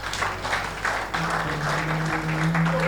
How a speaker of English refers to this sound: Can we give the choir a clap?